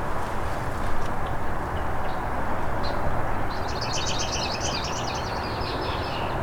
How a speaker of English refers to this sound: There, I'm right underneath it. A lot of red-winged blackbirds here too. Hopefully they don't drown it out too much.